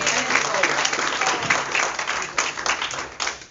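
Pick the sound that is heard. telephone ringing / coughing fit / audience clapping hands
audience clapping hands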